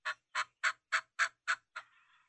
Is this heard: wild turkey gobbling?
yes